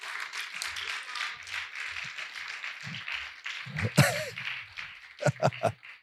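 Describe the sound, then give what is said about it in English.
A church audience claps hands after preaching in a dense, steady patter that runs throughout, mixed with voices and a brief shout, ending with a few sharper, louder claps. “Go ahead, clap your hands.”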